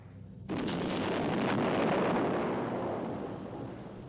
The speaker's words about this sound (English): You only see the shots very briefly, but it does look quite impressive as the UFO laser hits it and there's explosions going off everywhere.